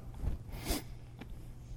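Two quick nasal sniffs, a stronger airy one followed half a second later by a softer, shorter one, ad-libbed while reciting wedding vows, with no talking around them.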